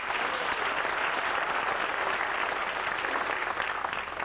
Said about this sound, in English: Give the Lord a clap with you, everybody.